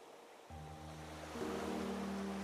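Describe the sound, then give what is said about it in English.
A continuous rushing wash of surf, steady and fairly loud, swelling slightly partway through, with a low steady hum underneath. No voices. “In contrast to that, being out in nature, listening to the waves, the birds, the surrounding sounds in the moment, it grounds me in a very distinct way.”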